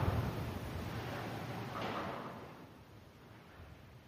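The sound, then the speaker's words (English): Wind rushes steadily at an abandoned factory while loose rusty metal rattles and scrapes, swelling into a louder grinding clank partway through before the noise slowly eases off. No voices. “There was just a creepy sound of wind banging rusty metal.”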